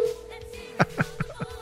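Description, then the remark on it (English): A steady, low-pitched phone ringing tone hums through the line, with a run of five quick, evenly spaced clicks or taps over it; no one speaks. “All right, it's ringing.”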